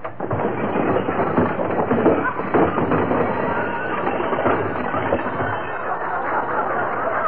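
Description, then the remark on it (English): McGee's overstuffed closet, opened by Gildersleeve, spills its contents in a long, loud, continuous cascade of clattering, banging and tumbling junk that keeps going for several seconds without letting up. “Gotta straighten out that closet one of these days.”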